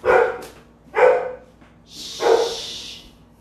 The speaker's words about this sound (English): Dogs again. What are they barking at? I have no idea. This is what we live with.